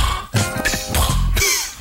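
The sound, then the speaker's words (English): A voice imitates a cat fart: a few raspy, sputtering bursts with a throaty, buzzing edge, fairly loud and over in under two seconds, with no words spoken. “That's how a cat farts.”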